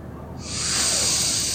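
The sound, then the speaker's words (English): A voice imitates a long, drawn-out sniff, as of smelling a seat: one steady, breathy rush of air that swells in over a moment and holds, hissy and fairly loud, with no talking. “Whoa, it's a big long drag.”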